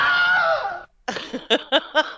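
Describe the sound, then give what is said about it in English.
A Wilhelm scream sound effect: a loud, shrill cry with a wavering, falling pitch, then after a brief pause a run of short, choppy yelps. There's no talking. “Oh, that was the Wilhelm scream.”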